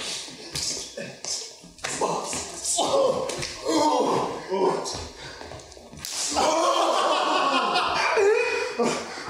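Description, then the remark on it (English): Two people slap each other hard: several sharp, loud slaps land in quick bursts, mixed with laughter and excited voices, then a final hard smack followed by more shrieking laughter. “We both slapped each other so hard.”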